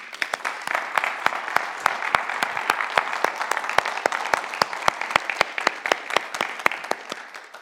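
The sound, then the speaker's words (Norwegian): An audience claps steadily throughout, a dense patter of many hands with sharp individual claps standing out, sustained at an even level with no voices. “Skal vi gi deg en applaus?”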